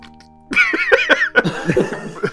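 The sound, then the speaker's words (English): A voice imitates a wet, gurgling cough, hacking out a thick glob of goo in a few loud bursts after a short quiet start. “He coughs up a goo right onto your face.”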